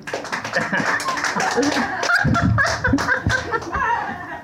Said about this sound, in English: But interesting enough, round of applause here in the audience of any servers who have actually, you remain anonymous. Who have messed with a customer's food or drink. Round of applause. Anybody?